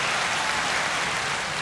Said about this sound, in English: Hold on. Applause.